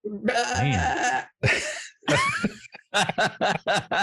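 A goat bleats loudly, several drawn-out wavering cries in a row, ending in a quick, trembling run of stuttered bleats.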